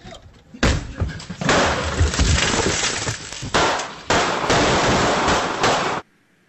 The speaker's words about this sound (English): The gunfire was coming from inside the house. Homeowner wasn't buying the Seattle police trick and wasn't going to wait for them to kick in the door either, and fired multiple gunshots at these armed intruders. You saw the shattering glass